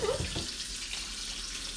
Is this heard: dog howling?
no